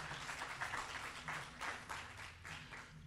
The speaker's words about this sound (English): If you believe that today, give the Lord a hand clap. Come on.